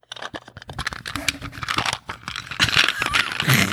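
Paper candy wrappers crinkle and rustle as paper candy is wiggled out of a purse and opened during a show, a busy, crackling stream of small bursts, with a sharper tearing rip near the end as the wrapper is pulled open.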